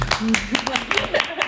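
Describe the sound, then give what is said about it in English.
A clap track sound effect: scattered sharp claps ring out in an uneven rhythm, mixed with people's voices cheering or talking over them for a brief moment. “Cue clap track.”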